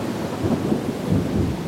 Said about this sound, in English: And the ship is still lurching, but the rain begins to taper off. There is a flash of lightning, and it takes eventually a full minute for the drums of thunder to resound.